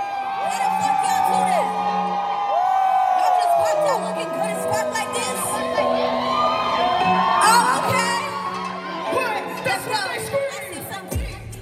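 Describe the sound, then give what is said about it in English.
A large festival crowd at Afropunk in Atlanta, in the pit in front of the stage, yells, whoops and cheers continuously for a performer, yelling her name and singing her song's words; a dense wall of overlapping voices with shrill shouts rising above it, loud throughout. “Everybody was like hyping her up, like yelling her name or just like singing the words to her song.”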